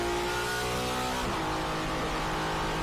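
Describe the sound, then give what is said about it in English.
A loud Ferrari F50 GT1 race car engine revs at the Yas Marina Circuit in Abu Dhabi with a strong harmonic whine, its pitch shifting partway through as the throttle changes, and no one speaking. “Yeah, this is a Ferrari F50 GT1. At the Yas Marina Circuit in Abu Dhabi.”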